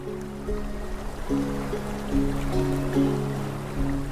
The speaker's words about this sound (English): But right now, our city's canals are rushing. The normally dry riverbeds are wet again.